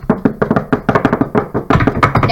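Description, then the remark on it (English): A switchblade knife being flicked open, a rapid string of sharp metallic clicks and snaps in an uneven rhythm, fairly loud and with no voices over it. “The sound of opening a switchblade knife up there.”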